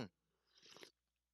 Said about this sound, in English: Let me sip my coffee here. It's still hot, y'all.